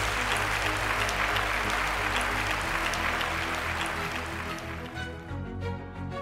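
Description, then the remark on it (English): A debate audience at Intelligence Squared, recorded live at the IFT First annual event and Food Expo, applauds steadily in a dense, loud wash of clapping that carries on for several seconds before fading as a soft music-like tone emerges underneath. “And I want to thank all of you for attending and voting and applauding.”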